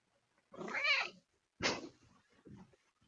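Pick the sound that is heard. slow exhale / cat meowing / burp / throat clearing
cat meowing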